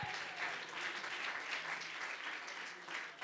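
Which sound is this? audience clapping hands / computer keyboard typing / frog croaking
audience clapping hands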